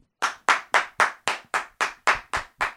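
Ten sharp, evenly spaced hand claps in a steady, brisk rhythm of about four per second, each crisp and fairly loud, with no voices over them.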